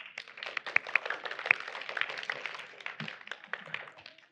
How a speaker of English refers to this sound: All right, everybody give him a round of applause.